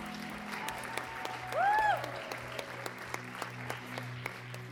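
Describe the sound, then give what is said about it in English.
An audience applauds with a steady patter of many clapping hands, joined partway through by a short rising-and-falling whistle, over a low continuous hum. “Can we give them a round of applause, guys?”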